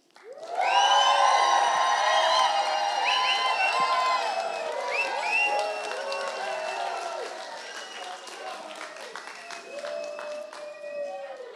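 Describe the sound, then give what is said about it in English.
A crowd bursts into loud applause and cheering, with many voices shouting and whooping over sustained clapping that gradually tapers off over several seconds. “Okay, was that a good round of applause?”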